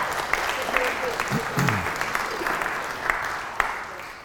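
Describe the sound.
A steady round of applause from a group, dense clapping with sharp individual claps popping out, a few faint voices briefly audible underneath.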